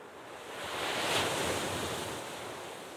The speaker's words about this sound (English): Let's just sit by the ocean for just a second before we close.